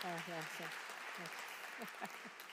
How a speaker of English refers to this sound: Well, a huge thank you for that reading. It was read at my home church a couple of weeks ago, because we're also doing Nehemiah, and it got a round of applause, so I think we should give our...